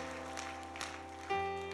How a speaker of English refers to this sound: Lift both hands. Give the Lord another great hand clap. Hallelujah.